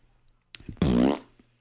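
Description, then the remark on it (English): A loud, wet, sputtering fart lasting about half a second, preceded by a few short crackling pops, with no talking. “You cannot fart right into the positive thought of the week.”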